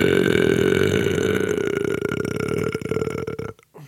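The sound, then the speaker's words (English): A long, loud, drawn-out burp rumbles for several seconds, low and guttural with a steady throaty vibration, then cuts off abruptly at the end. “Set a burp to establish dominance.”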